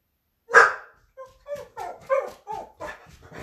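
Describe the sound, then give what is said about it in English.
A dog gives one loud, sharp bark followed by a string of shorter, softer yips and whines in quick succession, with no talking; the dog is barking because somebody is outside. “My dog's barking because there's somebody outside.”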